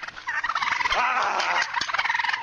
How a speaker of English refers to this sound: Leave the turkeys alone, dude. Why are you up in their shit? Yeah, get him. If he's gonna get up in your shit, let him have it. Turkeys aren't the nicest. Look how plump they are.